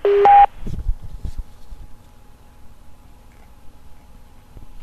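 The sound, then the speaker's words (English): A loud, brief touch-tone keypad beep or two right at the start, then a quiet phone line with faint clicks and low background noise, no talking. “You must be at least 18 and have a touchtone phone.”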